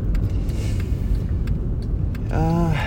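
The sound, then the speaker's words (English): Steady low road rumble from inside a moving car, with scattered light knocks and rattles as it rolls over uneven ground, and a brief voiced tone near the end. “She will fall asleep in the car while I drive on a bumpy road.”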